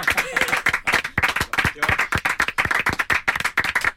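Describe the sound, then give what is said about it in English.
A studio audience at a radio show claps steadily, a dense run of sharp, overlapping hand claps with a bright, crackling texture that keeps a fairly even loudness throughout. “Let's keep the clapping going for an uncomfortable length of time.”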